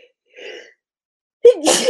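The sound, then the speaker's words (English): A soft intake of breath, a brief pause, then one loud sneeze with a voiced 'ah' leading into a sharp, hissing burst of air. “I'm sitting here trying to share this everywhere and sneezing and just having a great time.”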